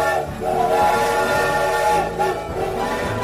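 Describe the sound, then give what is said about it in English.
A loud steam train whistle blows a long, sustained chord for several seconds as the train to Montgomery departs, wavering briefly partway through, with rail noise faintly underneath and no one talking. “We gotta make this train.”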